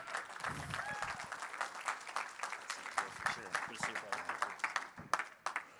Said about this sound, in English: We just want a big Edge round of applause to Mr. Tyler Grant.